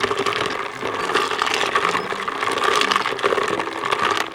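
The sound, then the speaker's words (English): Ice cubes are stirred with a spoon in a glass, a steady swishing churn dotted with quick, light clinks and rattles that keep going without a pause. No one speaks. “I really like the sound of that ice swishing around and clinking together.”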